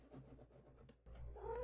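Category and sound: animal, cat meowing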